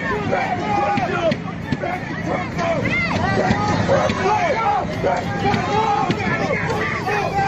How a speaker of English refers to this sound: I've got a clip here of a bunch of people trying to loot a FedEx truck.